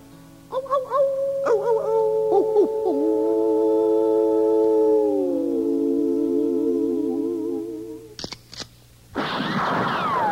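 A harmonic coyote howl: a few quick yips give way to long, blended howling tones that hold steady, then waver and quaver before a couple of sharp knocks and a burst of noise.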